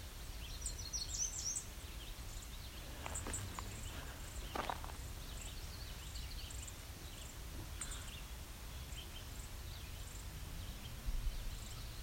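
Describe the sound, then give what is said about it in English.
Scattered, sharp tick calls from a juvenile song sparrow, a few brief clicks spaced irregularly, heard faintly against a quiet outdoor backdrop with other birds chirping and a low rumble. “So I've also got a juvenile sparrow, probably a song sparrow, looking at me and ticking too, as well as several other birds.”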